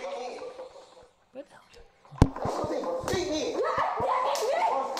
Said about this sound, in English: Ooh, little slaps.